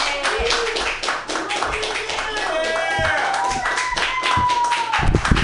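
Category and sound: crowd, audience clapping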